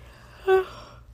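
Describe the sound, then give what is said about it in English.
A brief voiced yawn at about 1 a.m. from someone who had not slept the night before, fairly loud: a short tonal, breathy vocal sound lasting only a moment, with faint background hiss before and after and no talking. “Already, this is not a good podcast. I'm yawning already.”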